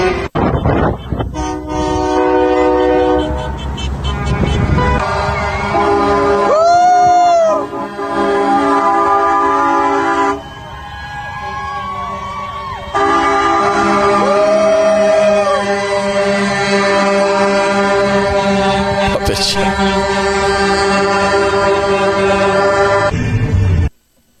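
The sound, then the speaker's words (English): A long, continuous chorus of loud vehicle horns blaring from a convoy of many cars and trucks outside Edmonton heading to Calgary on January 23, 2022, overlapping steady tones with occasional pitch-bending honks, sustained for over twenty seconds with no talking. “January 23rd, 2022, convoy. More than trucks, lots of cars and trucks.”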